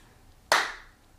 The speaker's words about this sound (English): Don't do it. Just clap.